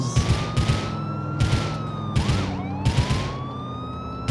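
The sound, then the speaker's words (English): A police car siren in a video game, from the cop car the player is driving, wails steadily with a quick warbling dip midway, layered over a heavy, regular thumping beat and recurring bursts of harsh noise. “At least you're in a cop car and don't try to get out of your way.”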